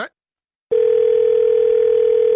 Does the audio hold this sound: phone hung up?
yes